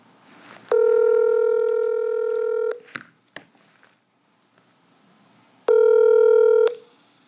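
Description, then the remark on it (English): An outgoing phone call to a nurse's cell phone rings: two steady electronic ringback tones separated by a few soft clicks and a pause, the second ring cut short. No one speaks. “I'm about to call a nurse who worked on the COVID unit but is off today, and so I'm going to try her on her cell phone if she picks up.”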